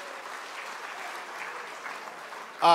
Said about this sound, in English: SLU, yeah, give them a round of applause. Absolutely, yeah.